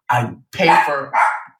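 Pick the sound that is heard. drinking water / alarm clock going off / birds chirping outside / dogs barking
dogs barking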